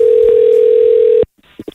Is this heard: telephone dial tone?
yes